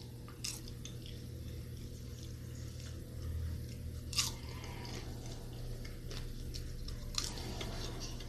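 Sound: chewing popcorn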